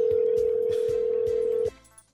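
A phone call's steady, loud ringing tone drones for nearly two seconds, then cuts off abruptly, with faint rhythmic low thumps pulsing underneath.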